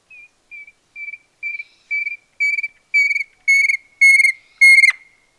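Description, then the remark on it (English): A bird of a species found in the forests of southeastern Arizona calls alone with about ten clear whistled notes in a steady series, each note growing louder and richer than the last until the final one rings out sharply. “Grab your ID guide and take a look at this magnificent bird as we play their call.”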